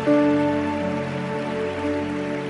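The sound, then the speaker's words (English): A crowd claps steadily as a clap offering to celebrate God, a dense, continuous crackle of many hands, over a sustained chord of music that holds throughout. No one speaks. “Increase the clap offering.”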